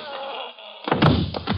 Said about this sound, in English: Mr. Templar, I'm going to wear that gun out, hitting people over the head with it.